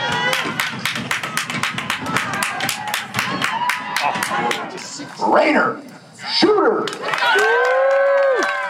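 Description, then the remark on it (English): A crowd of thousands of spectators at a lumberjack competition at the Lumberjack Bowl, a bay of the Namekagon River, claps in quick, scattered bursts, then breaks into loud shouts and cheers, with individual voices calling out over the applause, lively. “Pick on a favorite and cheer along.”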